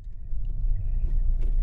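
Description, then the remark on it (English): Steady low engine rumble from inside a moving car driving to Bishop Stortford, a rural commuter town northeast of London, a continuous droning hum with faint road noise and no voices, lasting the whole short stretch. “We hopped in a car with our producer”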